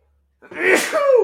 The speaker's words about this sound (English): Bless you.